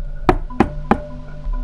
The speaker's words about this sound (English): You all kind of get there at the same time. The door is closed. I knock on the door